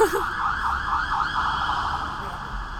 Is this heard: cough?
no